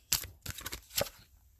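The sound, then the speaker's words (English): A quick flurry of crisp, papery flicks and riffles, several sharp bursts close together over about a second, as a deck of goddess guidance oracle cards is shuffled to pull a card, with no talking. “If you can hear that, that is the shuffling of the cards.”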